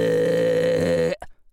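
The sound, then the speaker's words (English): A single long, loud belch into a microphone, droning with a deep rumbly tone for about a second before cutting off abruptly into near silence. “In fact, I had heard tell of one actor who belched enormously into the microphone and the producer said, "Oh, was that you?”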